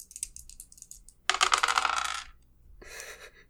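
Two dice are rolled across a hard surface: a few light clicks, then a loud rattling tumble that settles, followed by a shorter clatter a moment later, landing on a one and a two. No one speaks.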